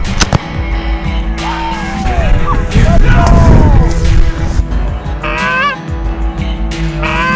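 A rooster pheasant bursts up and cackles in harsh, repeated squawks, loud, over a rumbling, noisy field background with people shouting.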